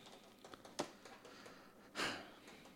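Soft computer clicks come in a loose, irregular series, with one sharper click and a slightly longer burst a second later, fairly quiet against a faint background hiss.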